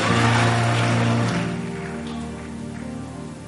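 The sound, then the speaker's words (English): An audience claps their hands in a dense, rain-like wash of applause, loud at first and easing slightly after a second, over a steady low hum. “Clap your hands and say, there's seven eyes of the Lord.”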